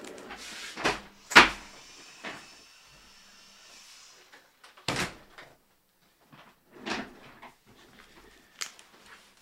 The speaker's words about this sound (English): I need to shut my door. Hang on a second.